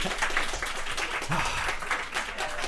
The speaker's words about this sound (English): They tried to clap and no one else clapped. Oh, that's sorry. Oh, you can clap.